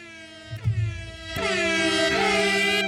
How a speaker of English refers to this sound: Hold on. I think I got an air horn for that. Do it.